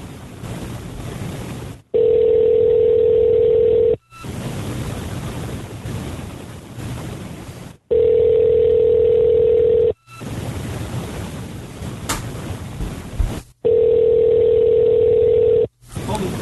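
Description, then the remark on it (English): A steady telephone dial tone sounds loud and clear in three separate two-second stretches as someone hangs up to call back, alternating with bursts of rushing, wind-like noise in between. “Hang up and call back.”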